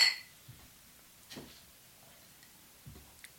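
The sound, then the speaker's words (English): Beer glasses clink together once in a toast, a bright ringing tap at the start, followed by a few soft, quiet knocks and taps, with no talking. “Cheers! Cheers!”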